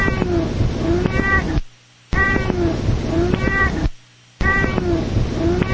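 A 15-year-old chubby black and white male cat meows three times, each call a long, drawn-out, slightly strained yowl separated by brief silences. The cries are loud, with no talking.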